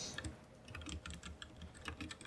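Rapid, irregular clacking of keys on a computer keyboard, a dense flurry of quick clicks with no pauses, fairly soft, with no voices.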